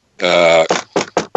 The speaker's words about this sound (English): You can hear me knocking on wood at that point.